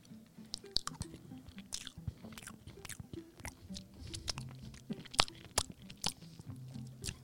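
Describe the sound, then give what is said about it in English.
Cool Whip whipped cream being lapped up: a steady run of soft, wet smacking and clicking mouth sounds, irregular and quick, with a low murmur underneath and no clear talking. “That's me. Lapping up the Cool Whip.”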